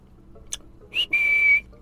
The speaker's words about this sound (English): She looks up and says, I'd appreciate it if you didn't whistle at me.